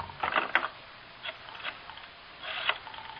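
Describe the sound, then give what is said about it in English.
A telephone being dialed to place a long-distance call to Los Angeles: quick bursts of dry mechanical clicking and whirring, pausing between runs, moderately quiet with no voices. “Crystal, can I call L.A. on this phone here?”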